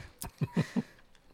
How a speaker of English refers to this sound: The worst part is I don't even know what's making me burp. I don't either. I haven't had any soda today or hardly anything to eat.